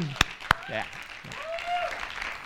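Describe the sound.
An audience breaks into steady applause for Teens Icono, a teen program that began the previous Friday, a dense wash of clapping opening with two sharp, loud claps, with a few voices calling out and cheering over it.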